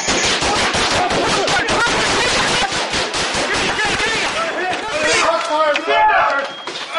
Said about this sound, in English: In a 96-minute shootout, five officers were hit.